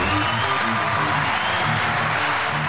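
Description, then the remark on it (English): A loud, steady roar of a studio audience cheering and applauding in a standing ovation fills the whole stretch without letting up, with a low, stepping musical tune running underneath. “The crowd's going wild.”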